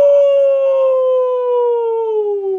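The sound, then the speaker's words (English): A person lets out a long, loud wolf-like howl, one sustained voiced note that slowly slides downward in pitch over a few seconds, heard alone. “I've got my wolf pack here. And all you people need to know that when you hear the roar, you know the score.”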